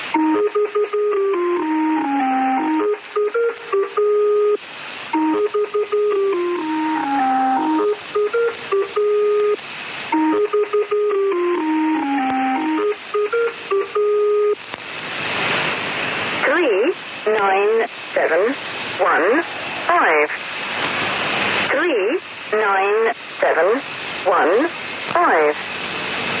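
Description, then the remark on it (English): Warbling, melodic electronic tones repeat in a looping pattern, then give way to hissing static with chirping, sweeping bursts as someone plays with a shortwave radio tuned to number stations through heavy interference, loud. “Just playing with my shortwave radio, and screwing with you guys. I'm listening to Number Stations, I like them.”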